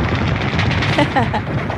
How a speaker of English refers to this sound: That's more machine guns. That's his sound effects he's putting in there. Yeah, he puts in machine guns and explosions to go off.